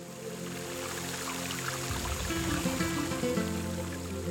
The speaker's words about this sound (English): Water dripped from the limbs in long, steady streams,